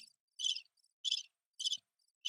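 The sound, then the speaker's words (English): Crickets chirp in a steady, evenly spaced pulse, four short trills in quick succession with silence between them, clear with no voices. “I've just come through like a period in December where I had a crap load of listings, but now it's like, it's crickets.”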